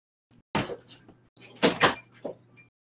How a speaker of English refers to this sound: Okay, our guest is heading out, so... Sorry, I'm gonna go close my door. I'll be right back.